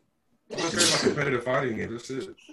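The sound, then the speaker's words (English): A loud sneeze, a single voiced burst with a hissy, breathy peak that trails off into a drawn-out vocal tail. “Bless you.”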